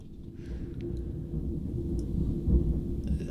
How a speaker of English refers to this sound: That's extended thunder. Unbelievable.